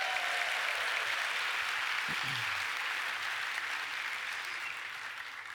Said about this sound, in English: Thanks, guys. You can big cheer.